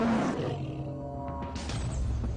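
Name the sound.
tiger roar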